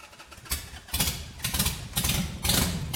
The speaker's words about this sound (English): yes, motorcycles.